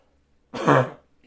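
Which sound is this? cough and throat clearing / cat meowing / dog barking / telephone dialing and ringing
cough and throat clearing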